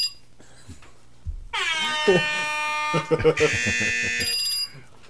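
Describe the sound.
A loud, harsh game-show buzzer blares for about three seconds, its tone shifting partway through, as people talk underneath it.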